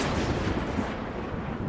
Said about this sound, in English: As she skewers you, you vanish from where you are in an explosion of thunder and lightning.